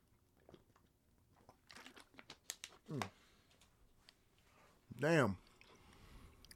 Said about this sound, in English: Damn. I hope I'm not chewing the whole episode.